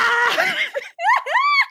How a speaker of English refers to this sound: Just keep going before I scream. I'm going to scream, but just wait.